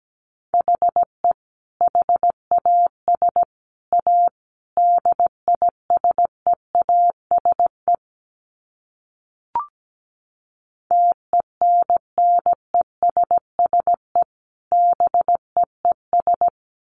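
Morse code beeps at 17 words per minute: a single mid-pitched tone keyed into short and long pulses, broken by a pause midway with one brief click before the keying resumes.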